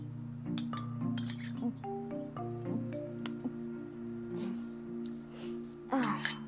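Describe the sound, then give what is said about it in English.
Glassware clinks several times at irregular intervals as water is served, bright ringing taps with short tones that hang briefly, over a steady low hum with soft background rustling. “Oh, you want some water?”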